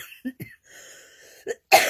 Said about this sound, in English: You cough in the middle of your video.